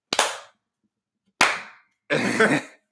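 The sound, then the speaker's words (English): Two sharp, slow hand claps for the Falcons, a little over a second apart, each with a brief ringing decay, followed by a short, rough, noisy burst of sound. “Whoa, here's two slow claps for them.”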